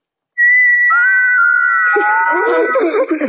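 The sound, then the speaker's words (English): Loud, high whistling from little carved figures starts with one long steady note, then several whistled tones join in layered pitches before dissolving into a jumbled, warbling mix of sounds. “These little carved figures can whistle.”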